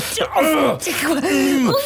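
Strained grunts and groans from two people struggling over a blunderbuss, loud, with wavering pitch in a few drawn-out, effortful bursts and no clear words.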